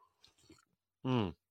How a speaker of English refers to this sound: Hold on, I'm going to have a sip of coffee.